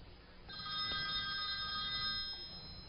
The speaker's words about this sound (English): Oh, looks like we got a phone call.